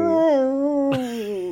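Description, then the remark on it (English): A person vocally imitates the cry a bear makes in a film scene when it gets dragged into the water: one sustained, tonal wail that dips slightly in pitch, with a brief noisy break partway through, loud throughout and with no other talk. “All I have to say is about that scene is that I love the sound that the bear makes when it gets dragged into the water. Can you impersonate that?”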